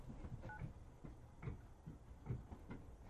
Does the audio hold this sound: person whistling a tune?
no